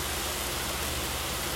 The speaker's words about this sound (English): It's amazing to watch as the rain just falls down upon the earth. I love it. I love it. It's so soothing. I feel so relaxed. It's healing.